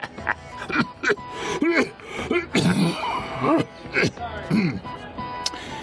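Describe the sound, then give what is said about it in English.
A loud fit of harsh coughing, a series of sharp bursts spread unevenly across several seconds, mixed with strained, wheezy vocal sounds between the coughs, from a person with a slight affliction of the chest. “Unfortunately, the laugh is overshadowed by my miserable cough.”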